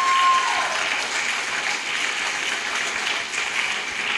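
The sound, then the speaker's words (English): An audience applauds the Lord steadily, dense clapping from many hands at a sustained, fairly loud level for several seconds, with no pauses and no one speaking over it. “how many of you guys can believe this and give a strong applause to the Lord?”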